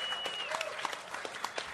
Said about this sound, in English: Also with us here. let's give a big round of applause to James Storm. Yeah.